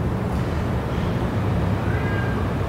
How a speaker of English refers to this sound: You can still hear the cat.